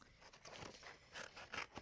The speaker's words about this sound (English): All right, I'm almost done. Again, I'm turning my paper so that I'm always cutting away from myself.